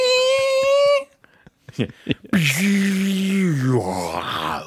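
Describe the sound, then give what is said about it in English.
A voice imitates a garbage truck's hydraulic noise: a steady high whine, a few clicks, then a loud, rough, low groaning roar that slides downward and keeps straining for a couple of seconds. “Well, garbage trucks have that really intense hydraulic noise that they make that's also very terrifying.”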